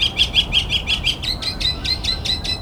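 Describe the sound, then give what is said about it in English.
A male northern mockingbird sings right overhead, clear: a quick, steady run of about a dozen repeated high chirps that shifts to a slightly higher note halfway through, with no talking. It is by a train yard right next to a harbor. “Now I've got the mockingbird right above me.”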